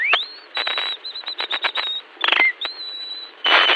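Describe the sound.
A man whistles an imitation of the early-morning call of the wren, a small North American bird: a rising whistle, then a quick run of trilled notes, another upward sweep and breathy bursts, clear, with no talking.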